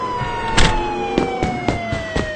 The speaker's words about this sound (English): I'm just turning on the siren here.